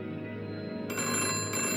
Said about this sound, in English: The telephone rang, and the glass of bourbon slipped from my fingers, shattering in a mosaic haze.